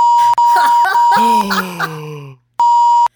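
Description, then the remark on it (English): A steady, loud censor bleep covering a swear word sounds for over a second, overlapped by a drawn-out groaning voice, then after a short silence the same flat tone returns briefly. “I could call you a f-head and it's fine because I beeped it out.”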